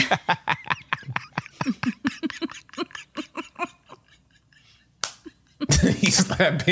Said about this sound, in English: He slapped his knee.